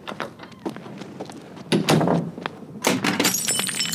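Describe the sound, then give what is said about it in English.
Glass test tubes clatter and break in a rapid series of sharp crashes and tinkles, with a louder burst of shattering around the middle and bright, high glassy jingles trailing off at the end. “Oh, no, my test tubes.”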